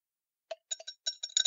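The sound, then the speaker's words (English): Two glass bourbon tasting glasses and a glass stirrer, unpacked from a styrofoam-wrapped box, clink together in a quick, uneven series of about nine bright, ringing taps, each with a short high-pitched chime, after a moment of silence. No one speaks. “Oh, and inside, son of a gun, two bourbon tasting glasses and a glass stirrer.”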